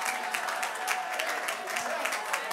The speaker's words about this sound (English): Somebody ought to clap their hands and magnify the Lord and say, it's my time.